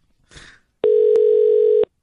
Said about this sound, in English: That phone hasn't rung in years. What do we do? What do we do? Well, you dial zero, it rings, but I don't know what's going to happen here.